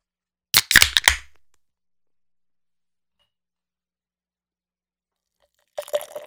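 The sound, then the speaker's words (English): A can of Recursion IPA beer cracks open with a quick cluster of sharp metallic pops and a short burst of hiss, followed by a long silence and then a brief fizzy rustle. “Let's fucking crack this thing open.”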